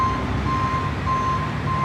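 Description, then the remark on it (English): A truck's reversing alarm sounds four steady, mid-pitched beeps at an even pace, about every half second, over a constant low diesel engine rumble. No one speaks. “Bring her in, boys. Back it up, back it up, back it up.”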